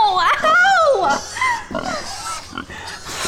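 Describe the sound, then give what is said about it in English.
Hungry pigs grunt and squeal, loud high-pitched cries giving way to a run of rough, snorting bursts that keep coming without a pause. “You know my pigs is hungry.”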